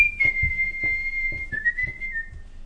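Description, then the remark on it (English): Someone whistles a tune of long held notes that step down slightly in pitch, clear, over a steady low thumping beat about twice a second. “Can't you just pipe that in later, all right, instead of whistling it?”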